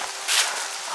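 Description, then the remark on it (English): Steady warm rain patters down on misty city streets as a dense, even hiss, briefly swelling louder for a moment before settling back to a constant wash of drops. No voices. “It's still raining.”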